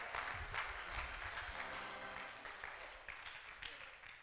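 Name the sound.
audience clapping hands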